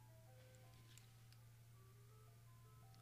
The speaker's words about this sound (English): Ice cream truck.